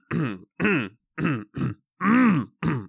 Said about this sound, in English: Oh boy, so that's a lot of coughing.